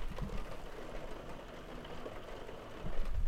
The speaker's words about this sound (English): Before we start, you'll have to forgive the sound of rain in the background if you can hear that. Actually, hold on one second. Let me stop talking. Let me see if you can hear this rain.